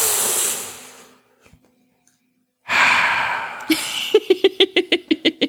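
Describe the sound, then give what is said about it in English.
A voice mimics smoking a cigarette: a long breathy exhale, a brief pause, then a sharp drawn-in breath followed by a quick series of rhythmic puffing breaths, fairly loud. “We play some like film noir music in the background, and it's just him with like cigarette smoking sound effects of just like.”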